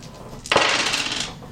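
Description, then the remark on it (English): Several dice, including D4s, clatter onto a hard table surface at once as damage dice are rolled in a tabletop game, a sharp impact followed by a brief scattering rattle that settles within about a second, fairly loud with no talking. “Do the numbies. All the dice.”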